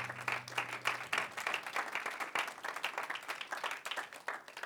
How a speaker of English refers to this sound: Give him a good hand clap of praise as you're being seated tonight.